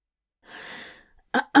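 A man shifts on his feet and clears his throat: a soft, breathy exhale, then two short, sharp throat-clearing bursts in quick succession, loud, with no talking.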